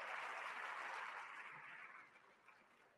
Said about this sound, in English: We have had over 430 responses to the straw poll. Give yourselves a round of applause, okay? That's awesome.